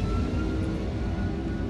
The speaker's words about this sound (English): Cabin crew, prepare for takeoff.